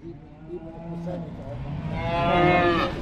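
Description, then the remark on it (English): A cow at a county fair livestock competition lets out a loud, drawn-out moo that swells and then cuts off, following softer lowing, with a low murmur of background noise throughout. “there are competitions to see who has the best pig, to see who has the best cow, and this is where they will bring their animals to show them off. If you have a really good cow, you might win a blue ribbon.”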